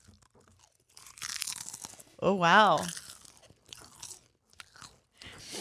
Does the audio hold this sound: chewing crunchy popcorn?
yes